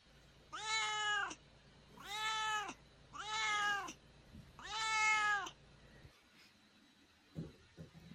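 A cat meows four times in a row, each call long and drawn out with a rising-then-falling tone, loud, followed by a brief quiet stretch with faint rustling.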